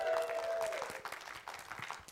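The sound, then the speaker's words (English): A church crowd claps and cheers together when asked how many Bills fans are present, a dense burst of applause with a bright whistle-like tone in the first moments, fading slightly as scattered claps continue for about two seconds. “How many Bills fans do we have in the house this morning?”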